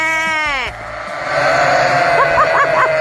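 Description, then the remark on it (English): A person near a pen of a couple hundred sheep gives a wavering imitation of a bleat, then the flock answers with a loud, overlapping chorus of baas that carries on steadily to the end. “If you get near a pen of sheep and you make the baa noise, here's what happens.”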